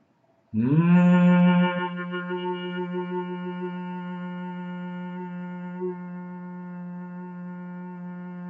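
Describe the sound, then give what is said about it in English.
A person does a deep humming breath exercise, humming while breathing out: a single sustained low hum rises in pitch at the start, then holds steady and strong for about eight seconds, rich with even overtones and no speech. “First into the belly, then into the rib cage, up to the throat, and while breathing out, start the humming sound louder, deeper, longer.”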